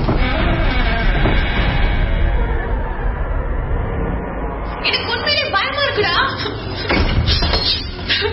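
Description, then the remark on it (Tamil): A house door is slowly opened partway by a trembling woman going in, with a heavy thud and a rattling bang over a dense, noisy background and a faint murmur of voices; it is raining outside at 5 in the evening. “மெதுவா தைரியத்தை வரவழைச்சுக்கிட்டு ஒருவித நடுக்கத்தோட கதவை திறந்து உள்ள போறா”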